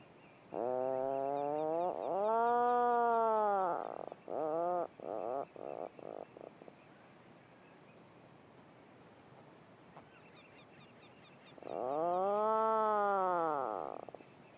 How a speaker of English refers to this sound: all this honeycomb effect of birds calling and answering to each other from below the surface and within their burrows with this lovely, deep, rolling motorbike droning sound, which again they call and listen for a reply from their neighbour.